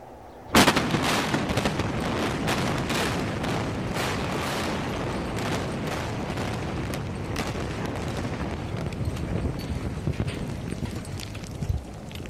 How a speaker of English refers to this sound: Doctor, I can see the power station in the distance. You've taken us only a few miles away. Yes, Brigadier. I averted the nuclear meltdown, but not the structural explosion. What explosion?